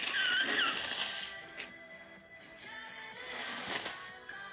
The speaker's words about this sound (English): There's some ASMR of me blowing my nose, if you could hear that. Oh my god, why is there a lot?